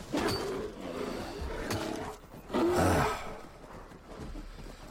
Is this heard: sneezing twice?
no